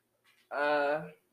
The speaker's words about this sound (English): I like playing with my dog. If you can't hear him right now, kind of wants to be rubbed and get loved.